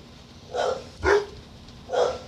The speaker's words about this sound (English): Fuck dogs. Oh, there ain't nothing to bark about. They just bored. No, somebody come in the door. Probably a damn kid.